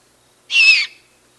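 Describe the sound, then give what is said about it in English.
A single raspy, hissing screech from a juvenile great horned owl begging its parents for food, lasting about a third of a second, fairly loud against a silent background. “That's a great horned owl juvenile, reminding its parents, "Hey, I'm over here, feed me."”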